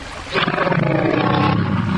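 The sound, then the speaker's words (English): A person growls out a loud, gravelly imitation of a bear's roar, one sustained rumbling bellow that kicks in after a brief pause and holds steady until the end. “I'm guessing there's an audio element to this. Just a big old roar.”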